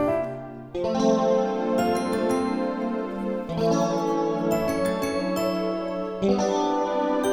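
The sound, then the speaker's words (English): A piano and bell part from a song arrangement plays as a counterpart over a sustained, shimmering pad, with bright bell tones chiming in at each chord change and a steady, moderately loud level throughout. “And now let's add in this piano and bell part.”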